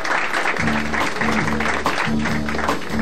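A live jazz trio plays sustained, chord-like piano and bass notes in a repeating pattern, beneath a steady wash of crowd noise and clapping from an audience close by.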